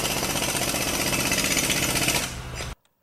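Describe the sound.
Loud, harsh snoring with a rapid, rattling pulse like a jackhammer, hammering steadily for nearly three seconds before cutting off abruptly. No one talks.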